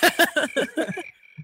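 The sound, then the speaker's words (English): A quick run of cricket chirps, about six rapid pulses in a steady rhythm, fairly loud, trailing off into a thin, fading trill with no one talking. “Well, crickets right there.”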